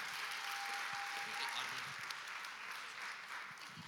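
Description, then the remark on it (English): A church audience applauds a couple steadily after a prayer, dense clapping from many hands filling the room for several seconds, with a faint sustained tone briefly audible underneath. “Round of applause for this couple.”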